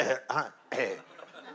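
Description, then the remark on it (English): Three short, rough throat-clearing bursts, the middle one more voiced, followed by a quieter tail with no talking. “This clearing your throat by the water”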